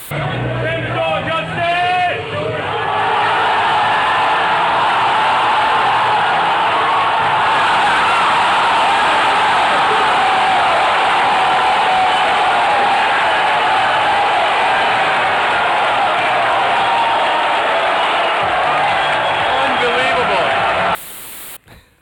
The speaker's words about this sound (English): Mason, go ahead and play that crowd going wild for that fight.